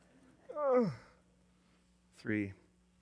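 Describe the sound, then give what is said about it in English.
Two children yawning aloud: a longer yawn sliding downward in pitch, then a shorter one about a second later, over a faint steady hum with no talking. “Oh my gosh, two kids just yawned at the same time.”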